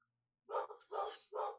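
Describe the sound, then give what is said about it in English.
A dog barks three times in quick succession, short, sharp yaps with brief gaps between them, with no one talking over them. “Is that your dog”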